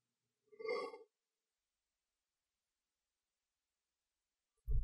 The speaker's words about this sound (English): And yeah, I yawned. I'm sorry. Podcast 101 at its finest.